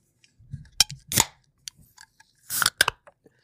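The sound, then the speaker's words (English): A drink can cracked open: a couple of sharp metallic clicks followed by short bursts of fizzing hiss, with some faint handling rustle and no talking. “When you hear that can crack, that mean your man back.”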